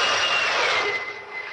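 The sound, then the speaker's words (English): A jet fighter roars past with a loud, hissing rush and a high whine, the engine noise steady at first and easing slightly as it moves away. No voices. “Then, as swiftly as they had come, they were gone, even to the piercing eye of radar and the speeding jet fighters.”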